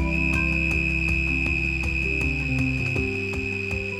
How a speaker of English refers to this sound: they basically climb on a leaf, chew a hole in the leaf, a hole that's more or less exactly the same size as their wings, that puts its head through the hole in the leaf, and then holds its wings absolutely flush with the hole, and then sings.